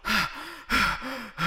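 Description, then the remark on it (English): A voice mimics heavy, exaggerated breathing: three loud, raspy gasping inhales alternate with groaning, voiced exhales in a steady, theatrical rhythm. “Would you care not to breathe quite so loud”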